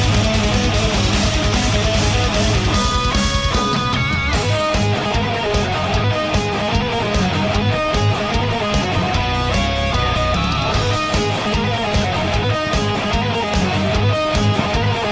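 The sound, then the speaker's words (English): Loud, driving metal music with a video-game flavor plays nonstop: dense distorted guitars, bright melodic lines and pounding drums fill the whole stretch, with no voices. “It's like Mega Man is battling in Mortal Kombat, which would be sick.”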